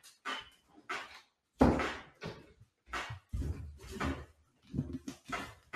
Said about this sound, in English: Yeah, I had to close my door. I had to close the door because I can hear you're downstairs.